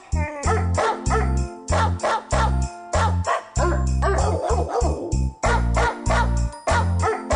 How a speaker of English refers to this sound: She is taking on, though, what could be the all-time worst song of all time, the damn barking dogs